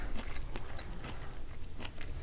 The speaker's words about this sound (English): Please do not chew into the microphone.